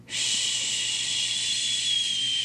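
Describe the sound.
A person makes one long, steady "shhh" right in a baby's ear as white noise to calm the baby; it begins abruptly and holds at an even, fairly loud level for over two seconds, with a bright, airy hiss and no talking.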